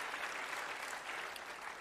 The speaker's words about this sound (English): Come on, give a clap offering of praise to the Lord God. Amen.